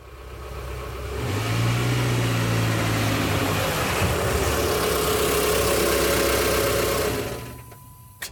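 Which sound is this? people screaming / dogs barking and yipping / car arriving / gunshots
car arriving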